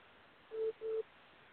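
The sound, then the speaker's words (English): A phone rings for an incoming call with two short, steady electronic beeps in quick succession, clear over a quiet background hiss, with no one talking. “I'm getting a phone call, man.”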